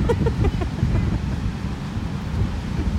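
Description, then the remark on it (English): Steady roar of ocean surf at Pacific Grove at sunset, mixed with gusty wind buffeting the microphone, a continuous low rumble that stays loud throughout, with no clear speech. “No, that's what the ocean sounds like.”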